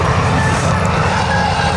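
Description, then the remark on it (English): A digger drives past at the Fawley power station during a car boot sale, its heavy engine rumbling steadily in a loud continuous low drone with a broad mechanical hiss on top and no speech over it. “Oh, there's a digger going past us in the Fawley power station.”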